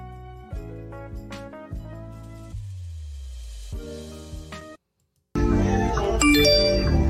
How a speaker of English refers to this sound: It's my phone.